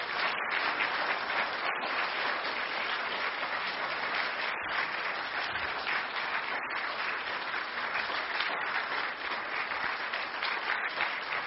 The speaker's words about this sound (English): But we want to honor her now. So we give her a round of applause, for sure.